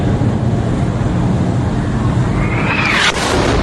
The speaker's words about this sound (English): So this you see these fence right here for a second, and then you're going to hear the missile, and you're going to see the explosion.